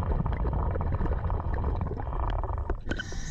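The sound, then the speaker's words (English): A scuba diver wearing a GoPro unclips a sub from a platform underwater, about 30 feet down: a steady low, muffled rumble with scattered small clicks and knocks, then a sharper clack near the end before a brief hiss. “And yes, you're hearing the actual sound of our actual diver doing the actual unclipping.”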